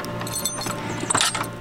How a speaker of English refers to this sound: We head outside and over to another warehouse. Let me unlock the door here.